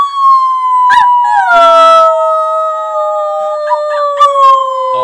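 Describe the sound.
Several human voices imitate wolf howls together, long sustained tones that slowly slide downward and overlap, loud, with a few brief breathy bursts between the drawn-out calls.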